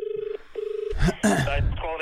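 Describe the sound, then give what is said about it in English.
A phone line's ringback tone purrs twice in a quick double-pulse pattern, clear as if heard through the handset, then cuts off as a voice starts talking. It is an outgoing call from Chermside Butcher and Grill to another nearby butcher. “That's just calling up the other butchers, being like, "Have you spoken to this Arnold Fine guy?”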